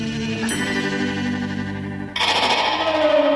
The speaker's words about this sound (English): They use guitars and reverb and God knows what else to make that noise. It's at least a couple of layered tracks in stereo with some right-to-left panning.